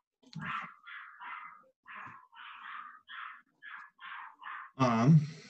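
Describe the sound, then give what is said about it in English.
A schnoodle (schnauzer-poodle mix) dog barks about a dozen times in a steady, rapid series of short, sharp, thin yaps. A voice briefly cuts in at the very end. “Dog barking.”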